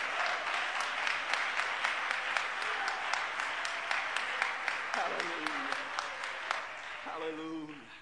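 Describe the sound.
A crowd claps steadily for several seconds in praise of the Lord one morning, a dense loud patter of many hands, while a voice speaks over it and calls out toward the end.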